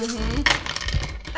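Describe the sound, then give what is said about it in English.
Two fistfuls of plastic dice clatter onto a hard tabletop in a dense burst of clicks, loud, with bits of background chatter around it. “Double fistfuls of dice.”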